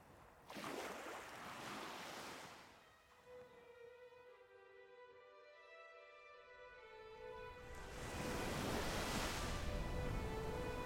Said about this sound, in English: As we reached the top, a gust of wind blew dust all around us. I stopped walking and covered my eyes.